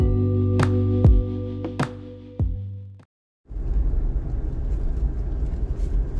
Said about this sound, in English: So I want to talk for a minute, and I'm in the car, so maybe a little loud, but I want to talk for a minute about focus.